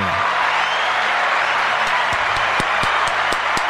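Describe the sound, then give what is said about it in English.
A large crowd cheers and applauds in a steady, loud roar, with a few sharp, distinct claps standing out near the end. No one speaks. “The crowd goes wild in that one, dude.”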